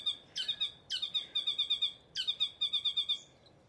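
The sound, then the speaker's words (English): Three bursts of loud, rapid, chattering calls from a pair of saddlebacks (tieke) foraging in a pine tree, each a harsh staccato string of bright notes repeating in quick rhythm, with a brief pause between bursts and no talking. “So we've got a pair of tieke that are foraging.”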